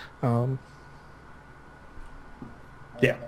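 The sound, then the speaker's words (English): A dog barks twice, a loud harmonic bark near the start and a shorter one about three seconds later, with a quiet steady hum filling the gap between them. “Hold on, dogs.”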